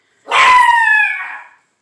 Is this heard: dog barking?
yes